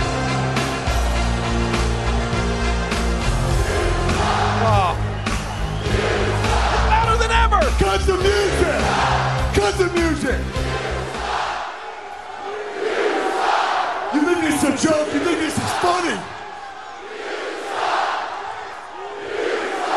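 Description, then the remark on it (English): A large arena crowd chants "You suck" and yells at a wrestler coming out, before his entrance music, in loud, rhythmic bursts, a dense roar of many voices rising and falling, with low rumbling underneath for the first half before the chanting carries on alone. “Does he actually think that when he comes out here now, these people are not going to chant even louder?”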